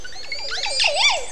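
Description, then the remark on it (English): A Montezuma oropendola's liquid, gurgling call bubbles up in rising and falling swoops, ending in a loud, arching whoop, clear against a quiet background. “The vocals have been described as a gurgling sound, like water poured from a bottle.”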